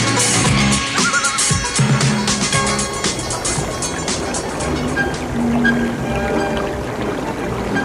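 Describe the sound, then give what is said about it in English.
Water rushes and gurgles steadily over stones, a fairly loud babbling brook that flows continuously from start to finish without pause. “You gotta admit, the dabbling brook.”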